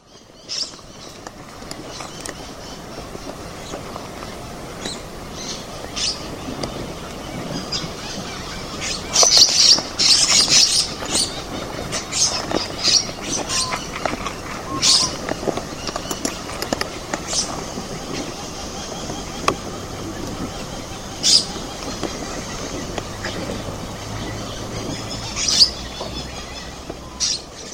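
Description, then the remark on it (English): Shrill, high-pitched screeching calls from several lorikeets, recorded by Phil Gregory at Lake Argyle in Western Australia, burst out repeatedly and at irregular intervals, loudest around the middle, over a steady low rumble of background noise. “This lorikeet has a high-pitched screech, so let's tune our ear to its call.”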